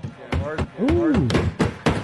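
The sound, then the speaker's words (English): A group of teammates pounds loudly on a table or surface, a run of heavy, uneven thumps and bangs, mixed with excited voices and a rising whoop of approval. “And that's all his teammates banging like on the pounding on oh yeah, like they're like they're all sitting there, going, and you hear him go, "Ooh!"”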